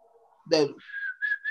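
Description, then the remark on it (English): A brief vocal burst is followed by someone whistling a short tune, a few clear notes from a soap commercial jingle, sustained then rising in quick steps. “But what's the dude that be whistling that does a commercial while he whistling?”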